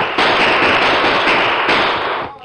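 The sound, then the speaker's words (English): A loud, rapid crackle of gunfire, sharp pops running together into a dense burst for about two seconds before cutting off abruptly, with no voices; shots fired after escaping riders. “Tonto, shoot her, they'll get away.”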